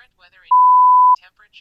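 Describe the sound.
A voice assistant's listening beep before a spoken weather request: one steady, loud electronic tone lasting just over half a second, with a voice speaking briefly before and after it.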